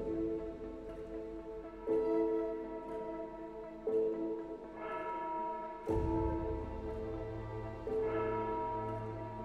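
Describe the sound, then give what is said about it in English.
A church bell tolls steadily in the streets of Halstone at dawn, struck about every two seconds, each deep, resonant strike ringing out and overlapping the lingering hum of the last, with no voices present. “Lena walked purposefully through the streets of Halstone, towards the sound of a tolling bell.”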